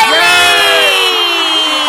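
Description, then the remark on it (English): A loud crowd cheers and whoops for about two seconds, with many overlapping voices and rising shouts filling the whole moment at a steady, energetic level. “And the crowd goes wild.”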